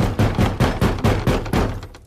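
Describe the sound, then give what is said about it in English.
Someone knocks on a door in a quick, steady run of about seven loud, solid raps, the last one trailing off into a brief hollow ring with no voices. “See who's at door there.”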